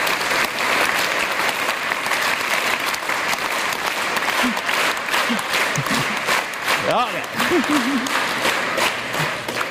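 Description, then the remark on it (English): A large lecture audience, asked to start clapping on their own and then to synchronize in a demonstration of how a laser works, claps loudly and steadily, the scattered applause settling into a shared, evenly spaced beat, with a few voices calling out briefly partway through. “That's all I'm going to say, and then I want you to all clap together. So anyway, start clapping. Synchronize.”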